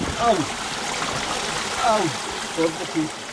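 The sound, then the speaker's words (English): A steady rush of water in the Rio Espiritu Santos river tumbling over slippery boulders fills the whole recording, with a few short, rising-and-falling tonal calls breaking through above the constant flow. “This morning, we descend down the Rio Espiritu Santos, the river of sacred spirits. We trudge through an obstacle course of slippery boulders and fallen trees.”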